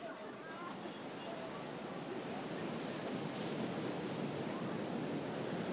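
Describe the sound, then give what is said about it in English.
Steady ocean surf washes continuously onto a beach, a broad, hissing roar that swells slightly over several seconds, with a hint of wind buffeting. The beach is where the US–Mexico border wall runs into the ocean, around noon. “One day about noon, we went to the beach to see where the border wall runs into the ocean.”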